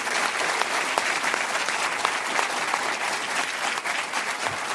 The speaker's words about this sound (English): So I just want to invite a round of applause for all of them.